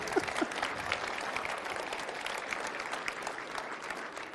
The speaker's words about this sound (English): You can clap. It's all right.